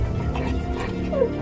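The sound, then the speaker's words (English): A dog-like whimper, a short high whine that rises and fades near the end, from someone in a car's trunk as the car suddenly bounces, set against a steady low rumbling background. “As I stood there by the back right wheel, the car suddenly bounced, and I heard another whimper.”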